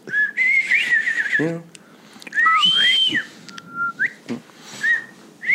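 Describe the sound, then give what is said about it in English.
A person whistles an imitation of a bobwhite quail call, several clear rising and sliding whistled notes in a loose sequence, fairly loud, with faint background chatter between phrases. “Gotta do a Bob White whistle.”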